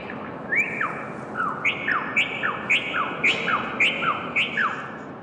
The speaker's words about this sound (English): Bird songs. They're delicate, melodic, maybe even a bit haunting. Above you, 120 bird cages hang suspended over the narrow alley, silhouetted against the sky and swaying gently in the breeze.